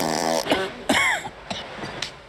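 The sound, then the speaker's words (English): A buzzy, drawn-out fart sound followed by a few shorter, sputtering bursts, fairly loud, with no talking over them. “And oh, I have fart now. Fart joke.”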